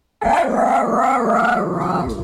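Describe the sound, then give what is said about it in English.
A dog sound effect used to signal a right answer in a movie quiz: one loud canine vocalization, drawn out and wavering for about two seconds after a brief silence, with no one talking. “You'll hear, yeah, dog. Yeah, dog.”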